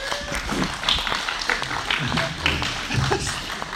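An audience gives a steady round of applause to honour a mother in the audience: dense, continuous clapping at an even level for several seconds, with some crowd voices mixed into the noise.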